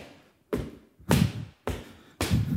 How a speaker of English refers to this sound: And then one day, there's a knock on the door.